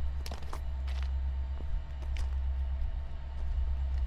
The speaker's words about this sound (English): A whistle sounds in the distance, and we watch a second train approach. It shoots by without slowing, so we resign to our hiding spot in the bushes.